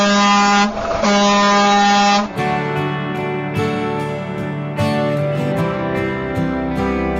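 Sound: truck air horns honking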